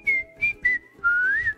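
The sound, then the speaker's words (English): A person whistles a short tune: three quick clear notes followed by a longer sustained note that slides upward and back, with no talking. “That was me actually whistling, so you're welcome.”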